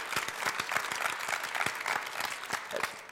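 An audience breaks into steady applause, many hands clapping in a dense, continuous patter that holds at a fairly even loudness throughout, with no voices standing out.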